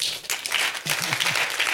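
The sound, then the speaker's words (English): A crowd gathered for prayer applauds in a steady, dense wash of many hands clapping at once, with a brief voice calling out faintly partway through. “If I were you, I'd be clapping for you.”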